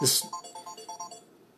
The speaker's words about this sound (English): Sorry, I don't know if that interrupted my recording or what, but I had a phone call coming in on my phone.